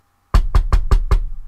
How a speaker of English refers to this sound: Peter hurried to John Mark's mother's house and knocked on the door.